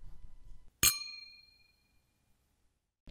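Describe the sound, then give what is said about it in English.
A single bright clink of glasses touching in a toast, ringing with a clear tone that fades over about half a second, fairly loud against a quiet background. “Have you poured your mimosa yet? What are you waiting for? Let's talk about TV. Cheers.”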